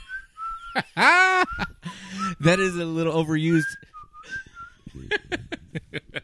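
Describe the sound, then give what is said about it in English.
A person whistles a short melodic tune, a movie character's theme, with clear sliding pitched notes, interrupted by bursts of laughter and talking from others. “I can whistle his tune, by the way.”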